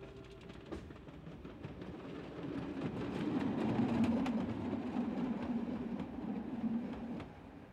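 A New York City subway train rumbles past with a steady low roar that swells in the middle, punctuated by sharp clickety-clack rail clicks in an irregular rhythm. No one speaks.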